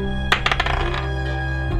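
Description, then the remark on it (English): Dice clatter across a table in a quick burst of sharp little clicks and taps that tumble and settle within about a second, over a steady low hum. “No, that rolled.”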